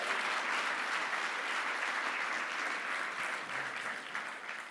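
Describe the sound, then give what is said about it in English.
A crowd claps steadily and fairly loudly for several seconds, a round of applause given in thanks, a dense wash of many hands with no voices standing out, tapering slightly near the end. “And we just want to maybe give Elkanah a round of applause and just say, wow, thank you.”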